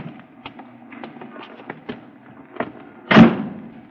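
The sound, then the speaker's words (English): A taxi cab door at the curb at 5th and 115th Streets as it gets dark: a scatter of small clicks and rattles as it is opened, then one loud, solid slam as it shuts near the end. “Christine Matson's cab pulled up at the curb and she opened the door for me”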